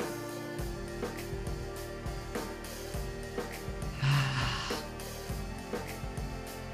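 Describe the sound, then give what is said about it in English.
A single deep, breathy exhale through the mouth during a three-part breathing exercise rises briefly midway, soft, over a steady bed of calm, sustained music. No one speaks. “Transitioning over when it feels right for you into the three-part breath, breathing in through the belly, through the chest, out through the mouth, breathing in through the nose, in through the nose, out through the mouth,”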